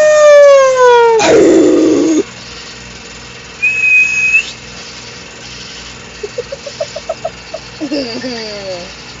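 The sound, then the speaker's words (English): A voice imitates a coyote, starting with a long sliding howl, then a burst of noise, a thin whistle-like tone, and a quick run of short yips ending in wavering howls. “I'm about 80% sure that was a fucking coyote.”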